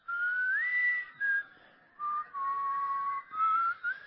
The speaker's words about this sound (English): Because, you know, whistling scares anything away, right? Can you whistle? Whistle with me. Can you whistle? You know how to whistle? And it doesn't matter what you're whistling to scare anything away, but if you just whistle. Come on.